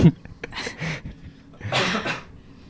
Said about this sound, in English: Mute yourself so you could cough, but we could probably hear it through the other mics anyway.